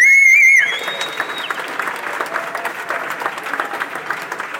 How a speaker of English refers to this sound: One more round of applause for our founder